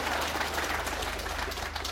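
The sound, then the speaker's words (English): Sustained applause from an audience, a dense, steady wash of many hands clapping at an even loudness for the full two seconds, with no voices standing out. “That was always going to get a big clap.”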